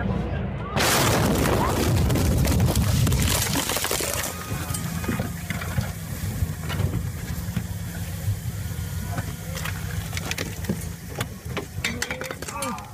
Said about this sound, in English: This is sound from cell phone video footage a student happened to be taking out the window of the bus at the time of the crash. It's really tough to listen to.